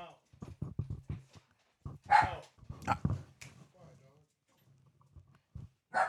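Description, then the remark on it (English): A dog barks sharply several times in irregular bursts, loud, with muffled voices talking between the barks. “Can y'all keep the dog down?”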